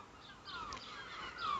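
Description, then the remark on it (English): Seagulls calling on a sunny day in Inverness, Scotland: a few harsh, drawn-out cries overlapping against a soft outdoor hiss, with one louder squawk near the end and no one talking. “On a sunny day in Inverness, Scotland, with seagulls in the background.”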